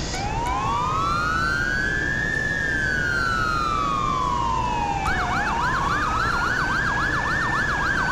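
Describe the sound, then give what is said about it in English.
A loud police siren on a car driving code 3 back to the station with an arrested person makes one long rising and falling wail, then switches to a rapid warbling yelp, with steady road rumble underneath. “So since this is an arrest, I can go ahead and take her code 3 back to the station.”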